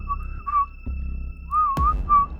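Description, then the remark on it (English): Someone whistles a short, wavering tune, several sliding notes with brief pauses between them, with a low rumble and a couple of soft thumps underneath. “I whistle a little.”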